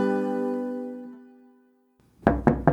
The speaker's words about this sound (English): However, one day, the knock on the door changed my mind.